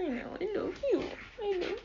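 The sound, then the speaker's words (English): A dog whimpers in a few short, high-pitched whines that rise and fall, fairly clear, with brief pauses between each plaintive cry. “God, what a cute dog.”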